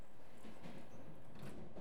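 A train closes its doors and rattles off from a platform, rumbling and rattling steadily with scattered clanks and a low mechanical roar holding at an even loudness throughout; no voices.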